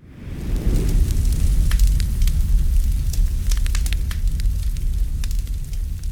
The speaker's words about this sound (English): let me turn my air conditioner back on, because I'm going to melt.